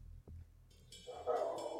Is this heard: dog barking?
yes